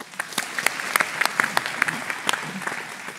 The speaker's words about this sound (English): Applause.